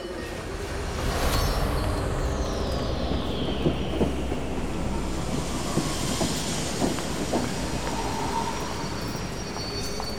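A train to Edinburgh rumbles along railway tracks with a steady, loud low roar, faint clacking of wheels and a thin metallic squeal sweeping downward early on, with no voices.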